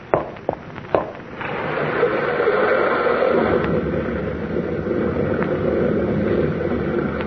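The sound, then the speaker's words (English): A rock fall about half a mile up a river gorge, where the river undercuts the cliffs, on a foggy, dark night: a few sharp cracks and knocks ring out, then a steady, broad rumbling roar of tumbling rock takes over and continues without letup, with no voices. “Big rock fall about 1/2 mile up the gorge there.”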